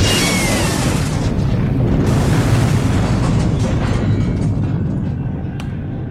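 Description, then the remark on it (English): A loud, continuous wall of battle noise in an arena as gladiators armed with guns attack a sealed door: deep booming explosions rumble throughout, with a few sharp gunshot-like cracks cutting through. No voices can be heard. “Bernie soaked up most of the gunfire while Fork clubbed anyone who made it past him.”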